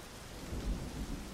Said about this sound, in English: And then the three younger ones go to Barbara's bed because there's a storm happening this night.